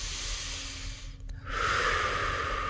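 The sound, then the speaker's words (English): One slow, deep breath taken during a guided exercise on body tension: a long airy inhale, a brief pause, then a fuller, louder exhale that carries on to the end. No talking. “Taking another deep breath.”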